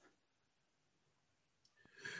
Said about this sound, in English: Excuse me. Whoa, that might be the first sneeze that we've had on the show. I know. It's because my dog is running around, like, doing stuff.